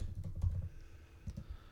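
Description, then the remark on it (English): Fast typing on a computer keyboard, entering the number 69: a quick flurry of soft key clicks, a brief pause, then a few more rapid taps, with no voices. “I typed it before you said it, and you could hear it on the recording.”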